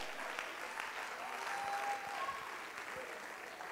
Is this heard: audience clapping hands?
yes